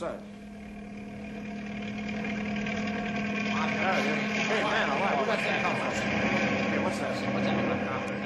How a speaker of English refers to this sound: Hey, there's a helicopter coming into the mesa.